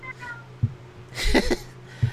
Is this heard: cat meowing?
yes